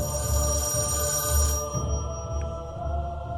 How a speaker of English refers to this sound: Just as the spider swings its claws down, a phone rings.